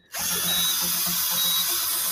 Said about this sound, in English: Now I'm going to need a drill. Yeah, a drill.